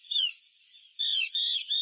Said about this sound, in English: I'm hearing chirping. And then I'm seeing the puffin who looks like he or she could be sitting on an egg.